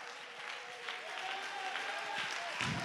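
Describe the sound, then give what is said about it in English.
A church audience stands and claps to give God praise, dense overlapping handclaps forming a continuous bright wash of applause, with faint voices mixed underneath and a sustained tone running through the middle. “Stand to your feet and clap your hand to give him praise.”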